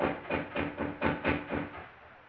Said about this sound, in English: What's what? Well, that knocking. I don't hear anything. Well, it stopped now, but it sounded as if... Wait a minute. There it is again. Don't you hear it?